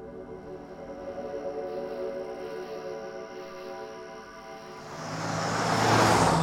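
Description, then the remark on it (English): A steady engine hum rolls along with layered road noise, then swells near the end as a louder vehicle rushes by with a broad whooshing hiss: a car driving in heavy highway traffic on the 101 leaving Los Angeles. “And then, of course, you hit miserable traffic on the 101.”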